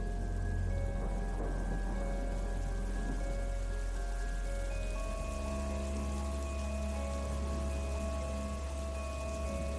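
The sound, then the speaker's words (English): Steady rain hisses and patters without pause on a dark, stormy evening at Flood Meadows in Hampshire, England, a dense wash of drops with a low, constant rumble and faint humming tones underneath. No one speaks. “It's a dark, stormy evening, and I'm walking through Flood Meadows in Hampshire, England, taking a shortcut on my way home.”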